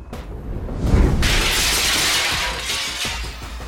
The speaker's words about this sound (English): The small bomb I'd fashioned, cobbled from various items I'd nabbed while traversing the city, smashed through the cottage's kitchen window.